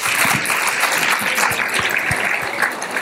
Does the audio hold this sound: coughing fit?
no